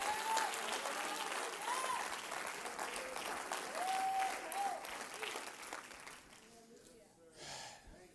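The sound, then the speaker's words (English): A crowd claps steadily with loud, dense applause, mixed with scattered cheers and shouts to the Lord, then fades somewhat near the end before a brief swell. “Clap your hands and shout to the Lord.”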